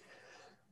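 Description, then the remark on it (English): A single sharp, sneeze-like cough bursts out, a breathy explosive blast lasting about half a second before trailing off into quiet. “It was more of a cough than a sneeze.”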